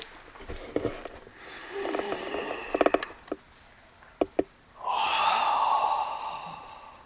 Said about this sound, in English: You're breathing. I'm what? You're breathing. I'm breathing. Deeply.